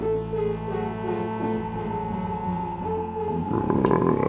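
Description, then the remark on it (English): A low, drawn-out croaking moan from around the corner behind a closed wooden door drones steadily for several seconds with a buzzy, harmonic tone, swelling louder and rougher near the end. No one speaks. “At that point, from around the corner behind a closed wooden door, you hear a croaking sound, a moaning sound.”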